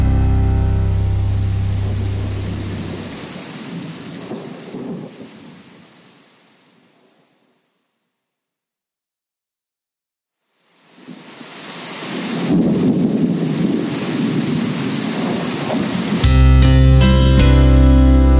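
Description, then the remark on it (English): Rain pours steadily as deep rumbles of thunder roll through a storm blowing in from across the desert sand. It fades to silence, then the downpour swells back loud, with music rising over it at the end. “There was a storm blowing in from across the desert sand, and Satan was riding in from collecting the souls of man.”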